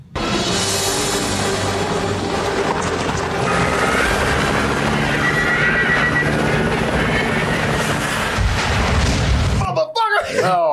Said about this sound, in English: That explosion cut. Almost off camera. Yeah, that was terrible, dude. Helicopter goes off this way and there's an explosion.